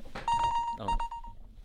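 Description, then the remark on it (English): Two electronic game-show buzzer beeps sound in quick succession, each a steady, bright tone lasting about half a second, fairly loud, with a brief clattery burst at each onset. The quiz buzzers are shown off by the players before a question-and-answer game. “Do you want to show off your buzzers, lads?”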